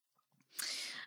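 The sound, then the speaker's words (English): A soft, breathy yawn: a few faint murmurs, then a long airy exhale that swells quickly and holds steady for about half a second before fading out. “So sorry about my yawning.”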